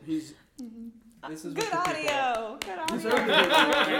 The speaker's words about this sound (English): Just so you guys know, that was like live in studio clapping. That wasn't edited in. No. We did that ourselves.